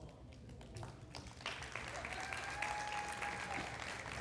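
A crowd in Lakeland claps steadily as people who moved there in the past year stand, a broad wash of many hands that swells after the first second and holds at moderate loudness, with a faint whistle or tone running through it.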